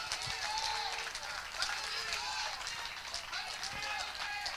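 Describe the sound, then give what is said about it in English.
An audience claps steadily and densely for several seconds as a clap offering to the Lord, a loud continuous patter of many hands, with raised voices calling and cheering over it. “Can you give the Lord a clap offering right now?”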